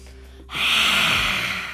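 A single long, deep breath drawn in through the nose as a yoga lion's breath in downward facing dog, loud, a steady rushing hiss of air lasting over a second after a brief quiet moment, with no talking.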